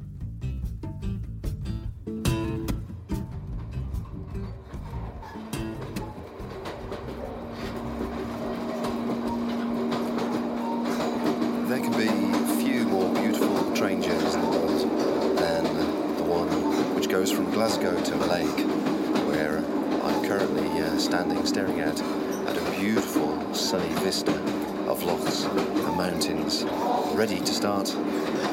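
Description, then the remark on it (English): Steady rumble and rattle inside a moving train carriage whose carriages are about to split, carrying some 60 or 70 challengers; rhythmic clicks over the rails early on, the droning hum swelling louder after a few seconds and holding steady; faint voices murmur underneath. “The atmosphere on the train is electric, the carriages are about to split, and the latter two carriages contain some 60 or 70 challengers, all of whom will be starting from different points, from Malaigue back down to Oban.”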